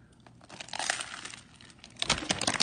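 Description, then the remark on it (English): Crackly, crisp crunching as someone bites into a sub sandwich, the Dante from Tempesta in Chicago, with a burst of crinkly bread-crust crunching near the start and a louder, denser crunch toward the end, no talking. “I want you to hear this crunch.”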